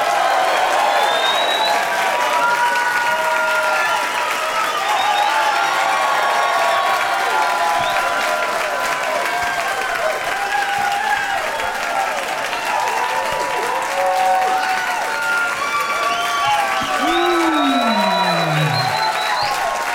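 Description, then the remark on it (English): Loud, sustained applause from a crowd welcoming guests Baron Vaughn, Matt Braunger and Rich Sommer, with cheers, whoops and whistles running through it at a steady level for the full stretch, no speech over it. “But please give a big warm welcome to Baron Vaughn, Matt Braunger, and Rich Sommer!”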